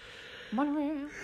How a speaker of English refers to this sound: Don't yawn. Do you think if you didn't look at me when I yawned, but you heard me yawn, that would make you yawn?